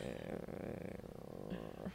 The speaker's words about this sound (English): What's that sound? That's like a... Is that a creaking door? Oh, yeah.